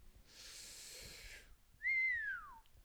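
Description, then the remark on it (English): A breathy rushing exhale is followed by a single clear whistled tone that slides downward, fairly loud, with no talking. “That's a good whistle.”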